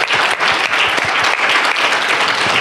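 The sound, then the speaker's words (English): Loud, sustained applause from an audience for the winner of a prize giveaway, a dense wash of many hands clapping steadily throughout with no pauses and no voices standing out. “A big clap.”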